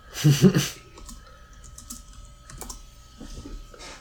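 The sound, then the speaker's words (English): Someone types a text message on a phone: soft, irregular little taps and clicks scattered over a few seconds, following a louder rustling thump at the start. “Here, I'm going to go ahead and text him, and I'm going to say, call me, dog.”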